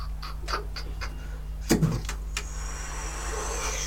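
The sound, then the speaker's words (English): A huge ballista bolt launching toward a party: a few sharp mechanical clicks, a heavy thunk of release, then a steady, hissing whoosh as the giant bolt flies through the air and descends toward the party. No voices. “And this huge ballista bolt makes its way not from the past but towards you.”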